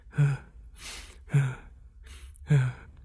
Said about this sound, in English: We hear the sound of a slow, anxious breathing.